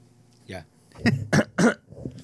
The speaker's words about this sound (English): He's just, homie's just coughing here.